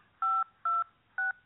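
Three telephone keypad tones beep in a steady sequence as a zip code is entered at an automated phone system's prompt, each a short, loud two-pitch electronic tone with brief pauses between. No one speaks.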